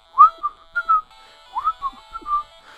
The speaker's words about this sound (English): No, I take back that whistling. It didn't make sense.